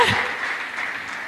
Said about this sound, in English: A better hand clap than that.